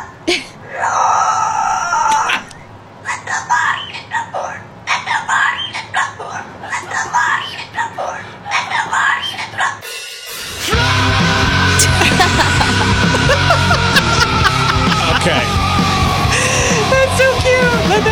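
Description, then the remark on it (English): A cockatoo makes strange wailing, yell-like vocal noises in a run of uneven bursts, then breaks into a louder, continuous stretch of harsh, screechy sound that carries on to the end. “I just bought a cockatoo from a guy on Craigslist, and it keeps on making these noises.”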